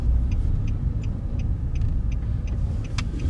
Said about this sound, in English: We back in the work truck. As you can hear from the fucking blinker and windshield wiper going on probably.